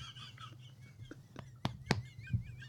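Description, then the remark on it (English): A few loud, harsh goose honks burst out in quick succession, set against a low steady hum and faint warbling bird calls in the background. “This isn't the Goose of Green.”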